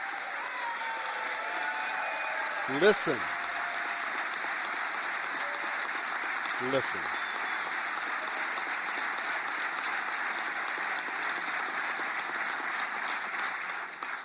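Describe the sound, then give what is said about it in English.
Steady, dense applause from a large standing audience in Florida for the governor, for those with special needs and the unborn, continues unbroken for the whole stretch, a thick wash of clapping at even loudness, with a man's voice briefly cutting in twice over it. “Listen to this applause of the governor standing for those with special needs and the unborn.”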